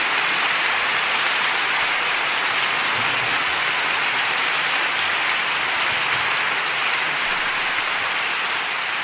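A sound effect of dense, continuous applause from a large crowd, a steady loud wash of clapping that holds evenly for about nine seconds with no voices over it.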